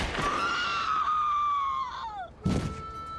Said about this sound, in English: And then someone shoots it and she screams.